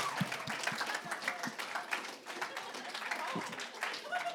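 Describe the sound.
An audience claps steadily for several seconds, a dense patter of many hands at moderate volume, with faint murmuring voices mixed in.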